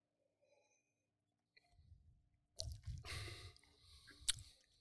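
After a brief quiet stretch, a wet slurping sip from a drink, followed by squishy mouth sounds and a sharp little click near the end. No one speaks.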